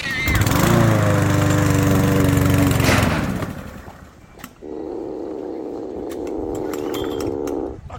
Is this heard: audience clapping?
no